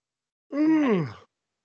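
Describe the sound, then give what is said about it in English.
A single drawn-out yawn, fairly clear, sliding downward in pitch and tapering off with a sighing, groan-like voiced tone after about a second. “Oh, you mentioned Shawn Spears and I just yawned.”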